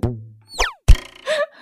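A short run of cartoonish twang sound effects: a ringing, decaying twang, a quick downward-swooping boing, then a sharp thump into a wobbling, springy tone. Loud, with no talking.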